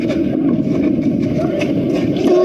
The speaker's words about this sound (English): And finally, after about like the fifth or sixth grunt, his opponent just makes a mockery of him. Yeah. And he gets penalized for it. So this is the, that's the legit guy grunting.